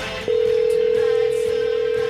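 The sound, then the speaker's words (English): A steady telephone line tone of a phone call being dialed starts abruptly and holds unbroken for nearly two seconds, loud, with no voices over it. “Let's give a call to my good buddy, the biggest LeBron James fan in the world, the one, the only Akron's native son”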